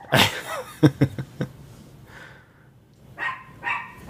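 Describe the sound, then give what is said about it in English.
A dog barks and yips several times in quick succession, then lets out a couple of higher, whiny vocalizations after a brief pause. “Hey, we have a dog. That's a perfect intro, dog.”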